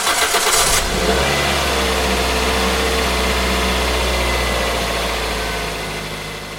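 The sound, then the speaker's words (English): A car engine cranks with a short, harsh burst, then catches and settles into a loud, steady rumble with some revving as the driver gets in to go to work, fading slightly at the end. No voices. “I got up, grabbed a quick shower, got dressed, walked and fed the dog, and then hopped in my car to get to work.”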